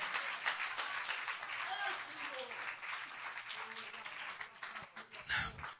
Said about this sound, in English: Clap your hands to the Lord and praise Him.